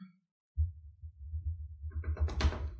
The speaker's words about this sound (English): You knock, no one answers.